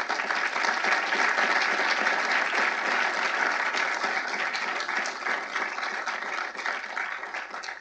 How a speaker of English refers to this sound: I want to take a moment to applaud and congratulate K. Cole James. Thank you for your service.